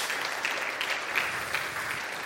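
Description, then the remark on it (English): An audience applauding a team as the church receives a plaque for its Operation Christmas Child ministry, a dense wash of many hands clapping at once, fairly loud and sustained throughout with no voices standing out. “Round of applause to”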